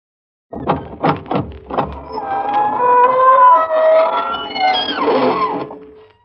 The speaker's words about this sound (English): Good evening, friends of the Inner Sanctum. This is your host bidding you welcome through the squeaking door.